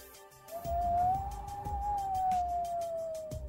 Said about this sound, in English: the winds began to howl.